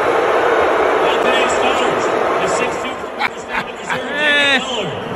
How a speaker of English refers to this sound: That's a weak boo. That's a weak boo? That's a weak boo. Like, I need boos raining down. That was almost like a golf clap boo. I was more than a golf clap boo. I'm not that mad boo, frankly.